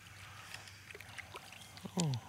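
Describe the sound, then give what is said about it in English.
An old outboard motor on a boat drones low and steady beneath splashing, rushing water, with a short vocal sound near the end. “Hopefully the old outboard don't hit it.”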